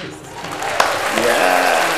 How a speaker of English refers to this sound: can we get some hand claps?